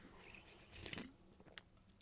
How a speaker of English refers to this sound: I am not, okay, I'm going to have another sip of coffee because this one's going to be a little interesting too. So hold on.